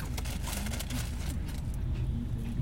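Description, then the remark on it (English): A garbage truck idles with a deep, steady engine rumble while its hydraulic arm whines and launches to dump a trash bin, rocking the truck for a second; a few muffled clanks and thumps mark the bin being lifted and emptied. “Like, it literally fucking rocked for a second because the thing launched to dump it.”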